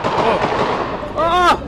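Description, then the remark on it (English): AK-47 gunfire from inside a shopping mall under a days-long siege, heard from outside the mall. It pops in a rapid, uneven cluster over a dense, noisy outdoor background, followed by a brief voice rising near the end. “Now, for 4 days, essentially, I and, you know, like dozens of international and local journalists are outside the mall listening to the sounds of gunfire.”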